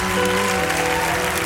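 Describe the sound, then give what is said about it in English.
A crowd claps steadily and loudly, a dense wash of many hands that holds at the same level through the whole moment with no voices rising above it. “So all you folks, clap for all these folks right now.”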